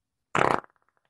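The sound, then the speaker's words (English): A short, loud, raspy fart noise made with the mouth, lasting about a quarter second, trailing off into a few faint sputters. “Could you just do a general fart to let people hear?”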